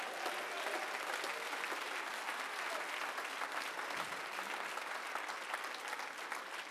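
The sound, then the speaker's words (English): A church audience claps hands to the Lord in a steady, dense wash of applause that holds at an even, fairly loud level for several seconds, with no voices standing out. “Oh, somebody clap your hands to the Lord.”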